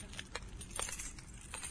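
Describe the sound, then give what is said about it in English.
A set of keys jangles softly, giving several quick, bright metallic clinks in an uneven rhythm over a low background hum, with no one speaking. “I have a set of keys here.”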